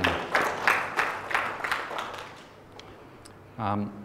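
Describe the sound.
A short burst of audience applause, with scattered claps that fade out over a few seconds, before a voice begins speaking.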